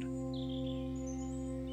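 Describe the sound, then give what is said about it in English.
Bird chirps come in a few short high tweets over a steady low electrical hum, with no voices present. “sound of a bird.”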